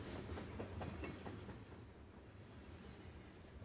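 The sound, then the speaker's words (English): Steady rumble of a train rolling along the tracks as it picks up speed after leaving a station, with faint rhythmic clickety-clack of wheels over rail joints, a continuous low drone throughout and no voices. “You can hear the relaxing sounds of the wheels turning along the tracks.”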